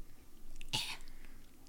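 One quick gulp of a drink, a short wet swallow that cuts off almost at once, with faint low background noise before and after and no talking.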